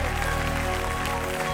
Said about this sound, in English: Come on, keep clapping. This is what it's all about.